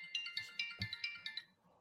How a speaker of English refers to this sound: But anyway, the worst thing is my phone was on silent, but the watch was ringing.